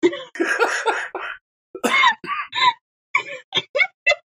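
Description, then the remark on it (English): Loud coughing: a long raspy hack, then a couple of throaty coughs and a rapid run of short, sharp ones trailing off, with no talking. “I had to cough.”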